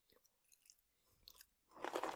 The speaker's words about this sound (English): So, let's now proceed with some chewing.